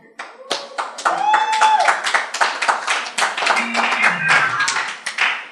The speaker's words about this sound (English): What kind of fake clap is that?